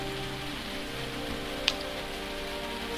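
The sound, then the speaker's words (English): Steady rain patters on a hard surface in a continuous, even hiss, with one brief sharp drip or tap standing out partway through; no voices. “I know there's rain in this parts.”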